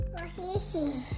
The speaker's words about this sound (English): As you can hear in the background, our toddler means that we spend a lot of time, you know, in home life taking care of our little one and our home.